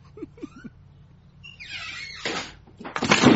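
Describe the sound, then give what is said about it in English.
A house door creaks and scrapes open as someone opens it to let a dog out, followed by a broad rushing burst as it swings wide, with a few soft clicks beforehand and no one talking. “Now I'm at the door, opening the door, calling my dog.”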